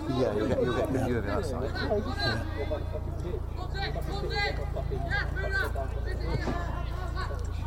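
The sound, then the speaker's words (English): A helicopter flies overhead during a Taunton Town football match, probably heading into Musgrove Park Hospital. It makes a steady, low rumbling throb that continues throughout, while people talk and chatter underneath it. “Sounds like there's a helicopter above. That's probably a helicopter going into Musgrove Park Hospital.”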